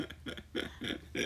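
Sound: imitated fart noise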